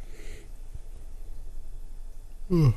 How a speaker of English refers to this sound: Sorry, I was yawning.